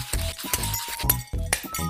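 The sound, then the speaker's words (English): Shards of broken glass clink and rattle together in a quick, irregular series of sharp, bright taps, fairly loud, with no voices. “Look at all this glass.”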